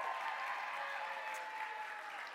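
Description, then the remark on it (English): A crowd applauds its youth pastors and leaders steadily, a dense, even wash of many hands clapping at once, sustained at a fairly constant level throughout with no voices standing out. “So can we give a round of applause for our youth pastors and our leaders?”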